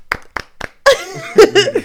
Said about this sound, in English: You see how we both clapped at the same time? Because I told you to clap.